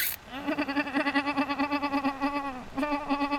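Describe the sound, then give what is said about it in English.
A person's voice imitates a chipmunk's morning call: a steady, nasal, rapidly pulsing chatter held for over two seconds, a brief pause, then the fluttering sound starts again. “making those weird chipmunk noises, you know?”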